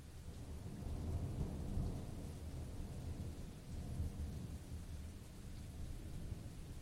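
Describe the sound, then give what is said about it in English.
A steady wash of rain with deep, rolling thunder rumbling underneath, swelling and fading over several seconds. No voices, just the storm. “There is an old saying, any port in a storm. The rain has an acute ability to make beggars of us all.”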